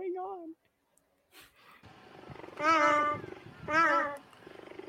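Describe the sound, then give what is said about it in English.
A cheetah purrs with a steady, rumbling low drone, broken by two loud, high chirping calls that rise and fall, after a brief quieter moment. “Did you know that cheetahs don't roar, they purr?”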